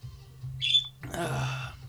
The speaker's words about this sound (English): I hear you got a bird in the background. Oh, man, it's picking her up. Yeah. That is Loki.